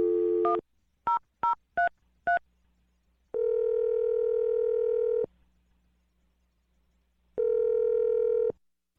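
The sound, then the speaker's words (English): A brief telephone dial tone cuts off into four quick, high touch-tone dialing beeps as a phone number is dialed to make a call, followed by two long, steady buzzing ring tones separated by a pause of silence. “Dial the phone number right now.”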